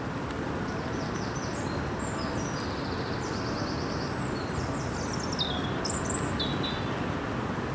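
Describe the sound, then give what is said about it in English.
Steady, roaring wind of approaching Storm Dennis rushes through the trees of a garden without letup, a dense low rumble filling the whole clip, while small birds chirp and twitter in high, scattered bursts above it. “The wind is rushing through the trees.”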